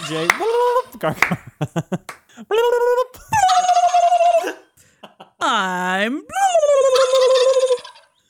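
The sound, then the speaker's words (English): A voice imitates turkey gobbling in a string of loud, warbling calls, some rising and falling in pitch, with short gaps between bursts and a brief spoken word near the start. “it's not even turkeys anymore.”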